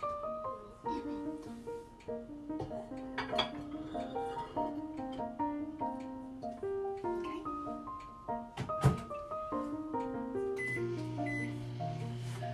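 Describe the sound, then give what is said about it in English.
Kitchen clatter as a dish is put back into a microwave for about another minute: a sharp knock or door shut near the middle, then a steady humming drone as the oven runs, over faint tonal background sound. “Back in the microwave for about another minute.”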